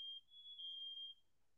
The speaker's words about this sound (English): I can tell you what it sounds like. It sounds like fire alarm.